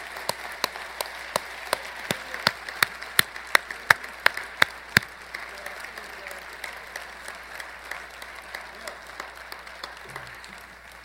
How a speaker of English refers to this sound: And let's, through our applause, ask God to bless them in the directions where they are going. Would you join me tonight and we'll do that?